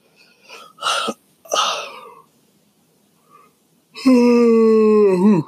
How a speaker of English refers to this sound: Get that yawn out.